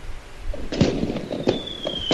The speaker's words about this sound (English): Give me fireworks, motherfucker. I want to shoot them off in my room.